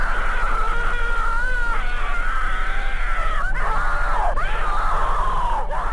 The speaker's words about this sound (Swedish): Skogen har alltså ett ganska kusligt smeknamn, nämligen den skrikande skogen. Det kommer från att ett stort antal människor har hört fruktansvärda skrik när de besökt den.